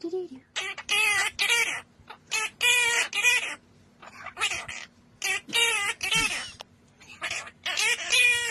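Two parrots squawk and chatter in short, rhythmic bursts, singing a song together, trading loud, warbling phrases like a sung tune, with a faint steady hum underneath.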